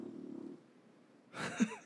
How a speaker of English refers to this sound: did you hear that? Did you hear that huge giant snoring in the background?